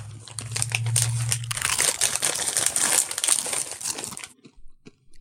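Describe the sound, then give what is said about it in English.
Loud crunching of crisp Indian curry Doritos tortilla chips, a dense stream of brittle crackles lasting about four seconds before it abruptly stops, with a low hum underneath at the start. “Indian curry Doritos. You guys ready for the crunch off?”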